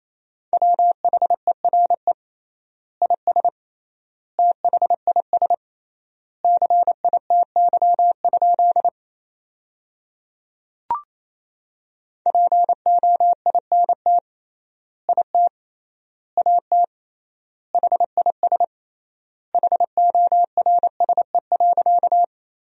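Morse code beeps at a brisk 28 words per minute, sending sentences built from the 300 most common words with triple word spacing: one steady mid-pitched tone keyed into rapid dots and dashes, with longer silent gaps between words. A brief click interrupts partway through. No voices.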